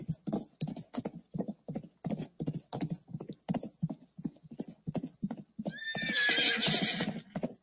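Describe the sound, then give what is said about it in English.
Steady, rhythmic clip-clop of hooves on a hard surface, fairly loud, then a horse lets out a long, high whinny near the end. No one speaks. “Can you contend with those horses that are coming?”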